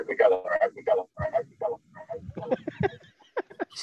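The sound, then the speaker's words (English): A garbled, echoing voice plays back through a connected device during an online call, from a participant connected on two devices, tinny and phone-like, with overlapping speech fragments repeating in quick succession for a few seconds. “All right, we got to echo.”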